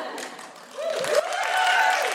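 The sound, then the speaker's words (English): A live audience breaks into a steady burst of clapping that swells in volume, with a few whoops or whistles rising over the dense patter, applauding a man in the audience who is a regular at the shows. “Don't applaud men for just coming through the door.”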